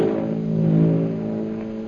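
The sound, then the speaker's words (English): An airplane circling high overhead in the darkness drones steadily, a low humming tone with layered harmonics that swells slightly in the middle and then holds even. No one speaks. “High overhead, a plane circles in the darkness.”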